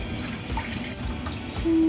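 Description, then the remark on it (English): Chicken broth is poured steadily into a pan, a continuous splashing trickle of liquid that swells slightly louder near the end, with no one talking. “Now you can add your chicken broth.”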